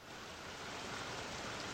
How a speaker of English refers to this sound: You're by a brook. You're by a brook.